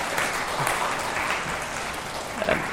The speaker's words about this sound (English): And I'll give her a round of applause.